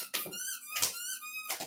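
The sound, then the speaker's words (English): A dog plays with a squeaky toy, giving two long, high, wavering squeaks separated by short breathy bursts as the toy is squeezed and released. No one speaks. “And as you can hear, my dog felt the need to start playing with his toy.”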